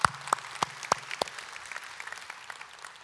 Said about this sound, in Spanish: Creo que eso merece un aplauso hacia Dios.